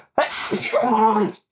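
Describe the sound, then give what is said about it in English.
A single loud sneeze: a sharp explosive burst followed by a drawn-out voiced trailing sound, then silence. “I found that sneezing is very scary whenever you have a beard, so you have to just make sure everything goes straight out.”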